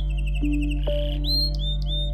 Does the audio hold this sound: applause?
no